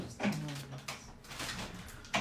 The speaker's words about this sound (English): Can I just trouble you to close these doors?